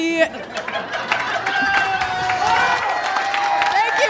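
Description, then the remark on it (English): A crowd breaks into sustained applause with scattered whoops and cheers for impeaching Donald Trump, steady and loud for several seconds, voices shouting over dense clapping. “Round of applause for impeaching that fucking asshole.”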